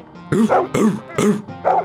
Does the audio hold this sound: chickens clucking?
no